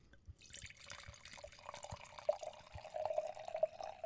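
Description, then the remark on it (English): A drink is poured into a glass, a steady splashing trickle whose tone rises slightly as the glass fills, with no voices over it. “Hit him with a pardon pour. Let's do the pardon pour.”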